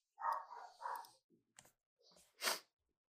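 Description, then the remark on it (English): A dog barks three times in quick succession, muffled and faint, followed by a few scattered soft noises and a sharper breathy burst near the end. “There's a dog barking.”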